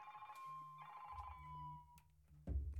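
A phone ringtone from an incoming call on a phone not set to silent chirps in short repeating melodic bursts, fairly quiet, with a low rumbling thud near the end and no one speaking.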